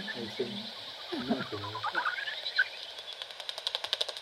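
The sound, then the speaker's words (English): Common pipistrelle echolocation through a bat detector tuned to about 45, with several bats coming out: a rapid series of dry, ticking clicks settling into a regular patter, preceded by murmured voices and a brief hiss. “No, it's their echolocation. So it's what they're kind of... shouting out, trying to find prey, trying to home in on insects, and just to navigate around as well.”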